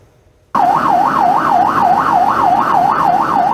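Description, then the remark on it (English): A sheriff's volunteer's police siren starts abruptly and wails loudly in a fast, steady warble over a low vehicle rumble at an Arizona highway rest stop. It is sounded to stop a truck whose driver drove off with his dog tied to the bumper. No one speaks. “Thankfully, a sheriff's volunteer was there, noticed, and hit the sirens.”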